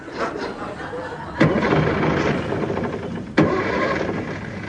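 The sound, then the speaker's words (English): A car engine cranks over and over without catching, a steady grinding churn broken by two sharp jolts as the starter is tried again. It's fairly loud, with no voices. “Having trouble? None at all, sir. I'm just trying to drain the battery.”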